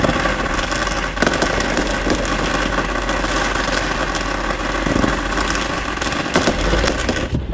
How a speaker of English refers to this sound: That sound? People popping fireworks 2 blocks from the United Center. Why they decided that before the 4th of July, I don't know,